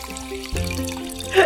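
Someone takes a short sip of champagne, a soft liquid slurp and trickle rising briefly near the end, set against a steady, sustained musical drone.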